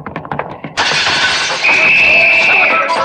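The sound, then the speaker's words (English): Muffled voices briefly, then the big front window of a house smashes with a sudden, loud crash, followed by a sustained harsh wash of shattering glass to the end. “That big window in front, Logan? Yeah, watch out for flying glass,”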